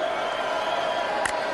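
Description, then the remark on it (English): A single sharp hand clap signaling quarterback Tanner Mangum's shotgun snap at a football game at ECU cuts through a steady, dense stadium crowd roar near the end, brief and fairly distinct against the constant background noise. “There's the clap of the hands, the shotgun snap.”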